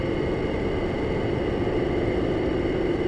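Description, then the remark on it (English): A modular synthesizer patch, with a Diode Chaos module modulating a Chopping Kinky module without attenuation, churns out a dense, buzzy drone, rumbling and noisy with a strong low-mid band, holding a steady loudness throughout with no voices. “So now let's start modulating some things. No attenuation.”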